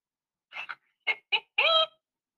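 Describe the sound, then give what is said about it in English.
A hen clucks in a short series of fairly loud calls: a quick double cluck, two single clucks, then a longer drawn-out squawk, with no talking. “My chicken just jumped over the fence.”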